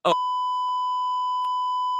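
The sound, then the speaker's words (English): A loud, steady censor bleep tone holds for nearly two seconds, cutting in right after a brief clipped fragment of voice at the start. “He didn't beep that.”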